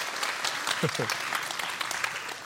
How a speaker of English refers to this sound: 17 years as a high school teacher. I think that deserves some applause.